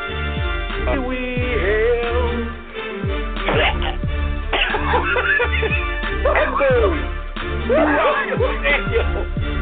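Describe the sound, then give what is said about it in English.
A man in a stadium coughs heavily and repeatedly in a long fit of harsh, rough bursts with brief gasps in between. “There is a pause throughout the stadium as this man sounds like he just coughed up a lung.”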